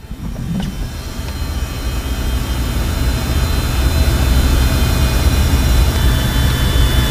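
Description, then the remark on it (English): A white Cirrus SR-20 propeller aircraft engine starts up in a hangar as the ignition is turned, its low rumbling drone growing louder and steadier over several seconds, with a faint whining hum riding on top. No one speaks. “I climb in and Tom turns the ignition.”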